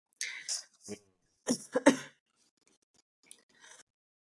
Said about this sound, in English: A little bit of a coughing fit there. I've been hardly coughing all day, and all of a sudden, of course.